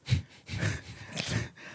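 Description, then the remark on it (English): A drawn-out, breathy inhalation, a loud dramatic gasp that rasps and wheezes in a few uneven surges, with no talking over it. “You took this long, dramatic gasp.”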